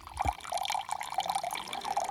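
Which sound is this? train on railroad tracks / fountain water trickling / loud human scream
fountain water trickling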